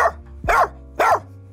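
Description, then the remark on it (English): A person imitates a dog barking, voicing Eddie, Martin Crane's dog from Frasier: two loud, sharp woofs about half a second apart, with the tail of an earlier bark at the very start and no talking. “I am Martin Crane and his dog, Eddie.”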